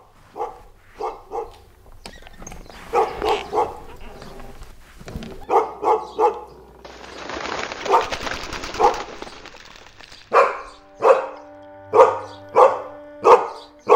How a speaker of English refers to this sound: Hold on. I gotta see what the dog's worked up about. Probably just, hold on.